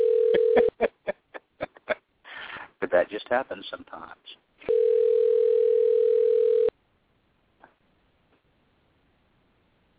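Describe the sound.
A phone line rings on an outgoing call: a steady electronic ringback tone, a short burst and then a longer two-second ring, with a person speaking briefly between them before near silence.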